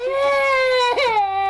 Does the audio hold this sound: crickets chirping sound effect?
no